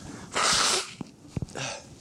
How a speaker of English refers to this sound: Just wait, I'm going to sniffle through this whole thing. I apologize.